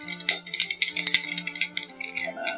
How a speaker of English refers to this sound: Dice! So I got a 7.